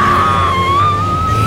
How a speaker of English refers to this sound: She screams in horror as Harry's arms drag her beneath the bed.